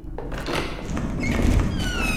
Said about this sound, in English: Here, I can open it wider from this side. I think the door can open now. Let me...